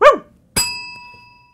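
A single short, fairly loud dog bark, followed a moment later by a sharp metallic strike that rings out and slowly fades.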